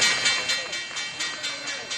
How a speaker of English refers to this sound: I didn't hear my opening bell. Cue the opening bell.